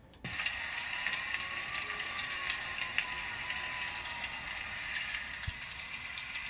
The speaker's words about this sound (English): you can just hear that continuous rain all the way through this